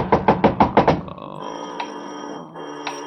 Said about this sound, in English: Somebody at the door. Better be quiet.